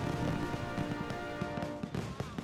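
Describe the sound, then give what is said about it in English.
Fireworks crackle and pop in rapid, irregular bursts, with steady musical tones sustained underneath throughout. “The first commemorative Independence Day fireworks were set off on July 4th, 1777.”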